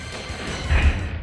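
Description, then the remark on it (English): A door being kicked down by Barry to free Jill, who is trapped behind it as a trap goes off: a dull, heavy thud bursts out with a low booming crash after a moment of hiss, then a brief rumbling tail. No voices. “I'm going to kick this door down.”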